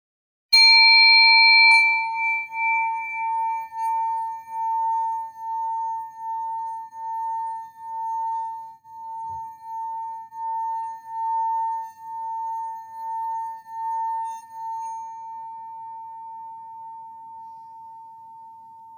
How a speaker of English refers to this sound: All right, ring on the gong.